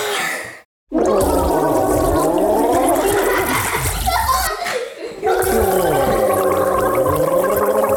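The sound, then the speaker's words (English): A person gargles water loudly, a bubbling, wavering gurgle that runs for several seconds with a brief pause partway through, demonstrating what a gurgly sound is like. “It sounds like, here, if you get me some water, I'm going to show you.”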